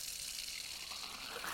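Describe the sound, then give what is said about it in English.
A steady, hissy rush like running water pours continuously for the whole moment, fairly soft and even, with no voices or other sounds. “At first, it just sounded like water running, sounded like somebody smashing up newspaper or wrapping paper.”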